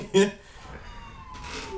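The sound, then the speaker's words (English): A faint emergency siren wails, its steady tone sliding slowly as it passes, mostly buried under people talking, in Savannah, where sirens ride by every week. “So shout out to the listener who would say the sirens ride by every week. There you go, they back.”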